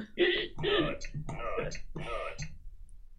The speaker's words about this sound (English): We should edit your hiccup and make it like our bleeping noise for the cuss words. Yeah, just hold your breath, bro.